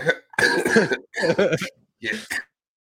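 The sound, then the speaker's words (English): A person coughs in a few rough, voiced bursts, with brief pauses between fits and the last one ending in a throat-clearing sound. “No, you put the end and then I started coughing.”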